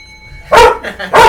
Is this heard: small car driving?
no